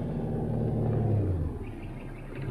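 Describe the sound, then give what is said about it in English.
A car's low engine rumble swells and holds steady for about a second and a half, then eases off as the vehicle approaches on the road. No voices. “Oh, hey, here comes a car.”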